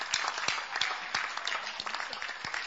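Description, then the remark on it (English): A group claps for a birthday: a dense, continuous patter of many hands, fairly loud and even throughout, with a few sharper individual claps standing out and no voices clearly heard. “Oh, is it okay to clap for?”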